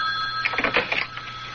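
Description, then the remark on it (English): A telephone rings, a brief burst of rapid metallic bell trills over a steady high tone, with no one speaking. “We should be hearing from him any minute. There. Answer it. Answer it. I don't want him to think we've been sitting right on the phone.”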